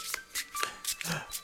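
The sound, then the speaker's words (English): Playing cards riffle-shuffled, a quick run of crisp, papery flutters in several bursts over about a second and a half, fairly quiet and with no voices. “a portal begins appearing in front of you, its edges lined with thick, shuffling cards that riffle in a pleasing manner.”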